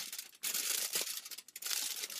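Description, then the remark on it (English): A pen pokes little star-like holes in tin foil, making crisp crackling and crinkling in a rapid series of bursts with brief pauses between, and no talking. “So what you're going to do is you're going to take your tin foil and you're going to put some holes into it. I use a pen, but you can use some scissors and just poke some little star-like holes.”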